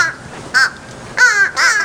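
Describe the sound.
A person imitates a crow with three loud, harsh caws, evenly spaced with short pauses between them. Each caw is a nasal, rasping burst; there is no other talk.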